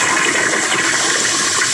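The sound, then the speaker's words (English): A toilet in Louisville, Kentucky, flushes with a loud, steady rush of water that roars evenly throughout, a broad hissing gush with no voices over it. “They got a hot brown, but I tell you, the real hot brown is what I just did into this toilet.”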